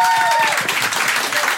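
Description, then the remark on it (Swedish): An audience bursts into steady, loud applause for the VIP guests, a dense patter of many hands clapping throughout, with a brief high whistle or whoop at the start. “En applåd för VIP-gästerna.”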